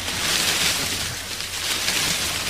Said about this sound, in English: Sounds like you're in the sea now.